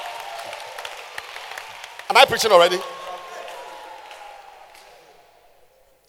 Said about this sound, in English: Can you clap your hands? Is it possible to clap your hands?